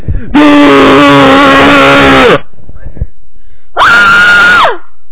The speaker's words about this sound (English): do you think I should yell into the microphone? Do it!